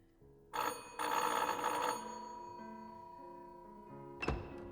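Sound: doorbell ringing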